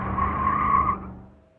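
A loud, sustained tire screech with a steady high squeal over a low engine rumble, lasting about a second before quickly fading away as a car tears out of a bar's parking lot.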